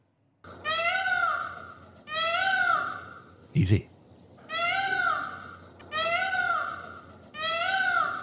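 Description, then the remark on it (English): Five loud, wailing Indian peafowl calls repeat at a steady pace, each a harsh, nasal, rising-then-falling cry. A person briefly says a word in a gap between calls. “There we go, the Indian peafowl.”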